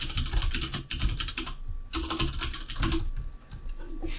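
Rapid, steady typing on an ergonomic computer keyboard, with dense clattering keystrokes and a short pause midway before the typing resumes. No one speaks.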